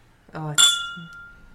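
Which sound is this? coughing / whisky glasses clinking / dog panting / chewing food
whisky glasses clinking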